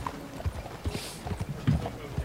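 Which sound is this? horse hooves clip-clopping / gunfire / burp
horse hooves clip-clopping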